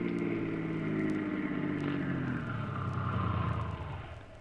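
A car engine hums steadily as the vehicle drives along a side road off the highway, its pitch sliding lower as it slows down and pulls up at a warehouse, the rumble easing off at the end.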